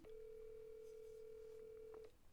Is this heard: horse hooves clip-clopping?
no